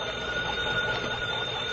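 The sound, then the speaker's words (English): A hand-cranked telephone bell at a lighthouse, rung long and loud by turning its crank, rings continuously, a rapid metallic clatter held steady for the whole stretch, fairly loud with no voices. “I turn this little crank here? Yes, ring it long and loud.”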